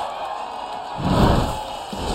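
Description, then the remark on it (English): A large outdoor crowd at Talladega Speedway roars and cheers after a race win, the broad wash of noise swelling in the middle before easing slightly, with no clear voices standing out. “Huge crowd. They stayed for every single lap. Give them some love.”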